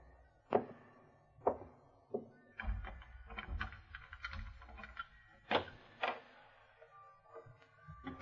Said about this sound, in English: As I fought my way up the creaky stairs to my room